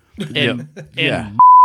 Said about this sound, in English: I want you to just bleep that. Yeah, I will. Yeah. Don't cut it out. Just beep.